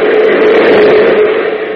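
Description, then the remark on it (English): A loud, steady roar of a subway train rushing past plate glass windows in an underground city, its lights shining in, a dense rumbling wash of noise with a faint metallic whine running through it, no voices. “Suddenly a train roars past the windows, its lights illuminating the faces of the two men.”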